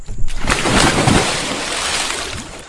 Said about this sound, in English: Further, and I discover what appears to be a beautiful babbling brook. Allow me to shimmy off my long johns and take a dip.